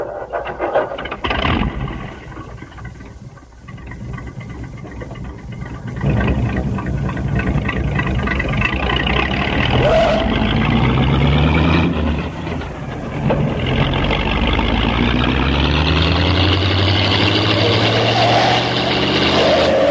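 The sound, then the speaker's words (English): A loud car engine with a rough, throaty exhaust from a worn muffler roars and revs repeatedly, its low rumble climbing in pitch with each push after a quieter idle at the start. “Someone needs a new muffler, I think.”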